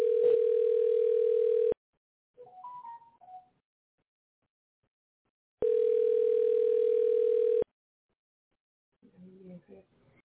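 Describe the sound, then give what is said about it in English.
A telephone ringback tone rings twice, each a steady two-second buzz separated by a long pause, with brief muffled voices talking in the gaps while the call goes unanswered. “Yeah, he don't want to answer the phone today.”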